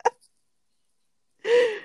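A brief sharp vocal catch, a second of silence, then a loud, drawn-out, exaggerated breath with a slight voiced groan in it.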